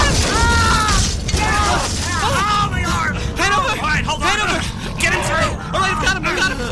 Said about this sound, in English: He was trying to get the door open. It was locked.